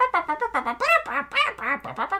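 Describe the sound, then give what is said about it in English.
A person imitates a cartoon bird with a quick run of about eight raspy, honking squawks in a choppy rhythm, fairly loud, with no other talk. “And then the Araquan bird shows back up. Oh my god. This little... Oh yeah, he shows up earlier. He just goes”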